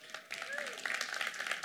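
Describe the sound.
A crowd breaks into applause, a dense, steady patter of many hands clapping that starts after a brief pause and holds at a fairly loud level, with a few faint whistles and voices mixed in.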